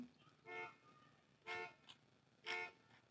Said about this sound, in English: Because it's, oh my God, a car alarm's going on in the background. That's going to be nice to cut out for you.